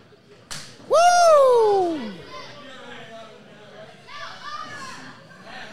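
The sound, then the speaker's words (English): A single sharp open-hand slap cracks across a wrestler's chest during a wrestling match, immediately followed by a loud, swelling crowd cry that trails off into steady arena murmur and scattered shouts. “Now, you have to wonder, when you do a slap across the chest like that, you got to hope that you don't hit your hand on the zipper when you're not looking at a bare chest.”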